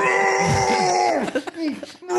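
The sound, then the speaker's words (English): A voice imitates a man yelling while vomiting in a bathroom for about half an hour: loud, strained, wavering groans with sliding pitch, breaking into choppy gagging bursts before one last drawn-out bellow. “Like he was like yelling as he was vomiting for like a half hour.”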